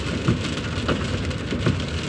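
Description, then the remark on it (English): Heavy rain pours down steadily, a dense, constant wash of noise with occasional louder drips and splashes. No one speaks. “Well, this rain is just, like, crazy.”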